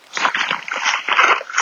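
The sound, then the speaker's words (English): A dog making irregular snuffling, rustling noises for a second or two during a rainy thunderstorm, with no barking and no one speaking. “That's my dog.”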